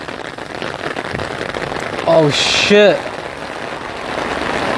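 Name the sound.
heavy rain falling outdoors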